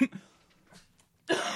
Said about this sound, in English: He's too excited. Bitches. He's just coughing too much of excitement.